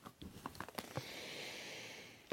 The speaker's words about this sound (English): Go inside, and I'm going to have a sniff.